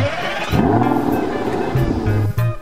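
A car engine turns over and roars to life, then revs loudly with a low, rumbling growl that rises and dips in pitch over a few seconds.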